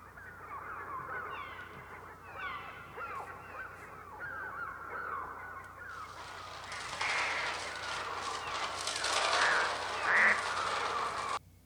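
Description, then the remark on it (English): A dense chorus of shrill, squawking bird cries overlaps continuously, then swells halfway through into a louder, harsher rush of screeching and flapping-like noise. No one speaks. The sounds are from the opening of Alfred Hitchcock's film The Birds, played with the Universal logo. “So I actually we got to do a deep dive into just what were those sounds from The Birds, okay?”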